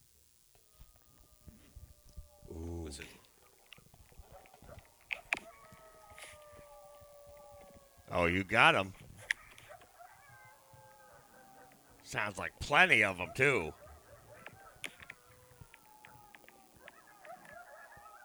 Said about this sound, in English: Listen to this. This is me letting my dogs out.